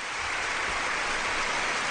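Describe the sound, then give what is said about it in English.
Dense, steady applause from a large crowd, loud and continuous throughout, a hissing wash of many hands clapping at once with no pauses and no voices standing out. “The crowd aren't happy, though. Well, the crowd are, but my army aren't.”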